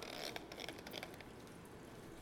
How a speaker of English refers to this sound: We also spray down our hands with a bit of alcohol just to disinfect them.